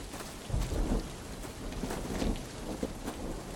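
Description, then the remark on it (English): Low rolling thunder booms across the sky beneath a steady wash of heavy rain over a flooding, muddy road, swelling in a deep boom before settling back into the constant hiss of falling water. No voices are present. “Pierre and Remy hurried through the mud, slipping and sliding in the ooze as the first rolling booms of thunder split the sky.”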